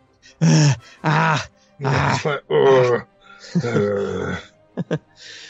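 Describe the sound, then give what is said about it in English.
A voice imitates heavy panting: five or six loud, breathy, groaning exhales in a rough rhythm, close up, followed by a couple of quick short gasps. “I picture being very quiet in this cave now, except for like heavy panting, maybe from Cave.”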